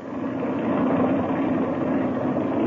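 A steady, loud engine drone holds at an even level, a broad rumbling roar of an airplane engine warming up after the throttle is cracked open a little, with no voices over it.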